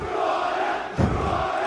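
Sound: football crowd cheering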